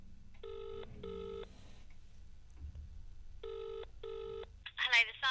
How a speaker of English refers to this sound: So here is my first phone call. But how long can I keep the Sun on the phone for?